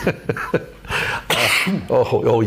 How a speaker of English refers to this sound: Now he coughs.